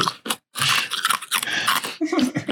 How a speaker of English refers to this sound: I'm sorry, I chewed ice. That was thoughtless.